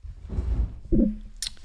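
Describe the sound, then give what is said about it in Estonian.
Wet, squishy chewing of a mouthful of ice cream, two bursts of smacking mouth sounds followed by a brief sharp slurp or lip smack at the end, with no talking. “Vana lihtsalt sööb jäätist siin.”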